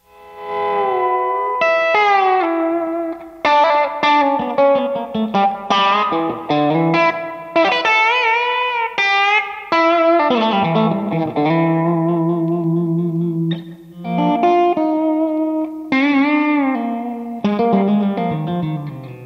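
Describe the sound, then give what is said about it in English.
A refretted 1973 electric guitar plays a continuous melodic passage through effects, its tone saturated and slightly echoing, with sustained notes and quick runs filling the whole stretch, loud with no talking. “And I bought it, and I loved it, and had it refretted, and it's just been awesome. It's just the tones they run the gamut.”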